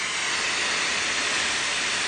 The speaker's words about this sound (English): Ooh, that's an interesting white noise. It's so trafficy. Yes, it's quite trafficy, almost watery from where I'm standing, sitting.